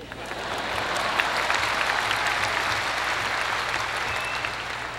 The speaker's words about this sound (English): With previous experience in mind, I will be brief. That's an applause line.